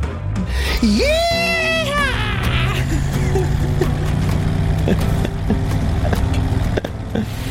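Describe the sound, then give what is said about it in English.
A single loud, drawn-out scream from a person, its pitch rising and wavering for a couple of seconds, over a constant low engine-like rumble that keeps going after it stops. “And then I scream.”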